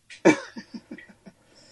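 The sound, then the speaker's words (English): A man coughs: one loud, harsh cough followed by a rapid string of four or five smaller, weaker coughs trailing off, with no talking. “Oh, it really got way worse when he coughed.”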